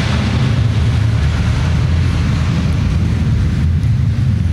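A plane taking off: a loud, steady engine roar with a heavy low rumble and broad hissing noise, continuous for the whole stretch with no voices.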